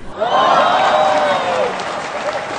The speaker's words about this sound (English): So, yay, insert canned sitcom applause here.